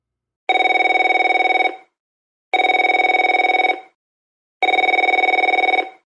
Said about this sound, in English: The phone rang, and I jumped about 2 feet straight up.